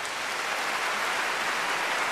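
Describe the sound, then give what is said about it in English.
Thunderous applause from a large concert hall audience at the end of a concert, a dense, steady wash of many hands clapping at once, loud and sustained throughout with no voices standing out. “Beginning with one overexcited soul, but spreading almost instantly to all corners of the room, a thunderous applause.”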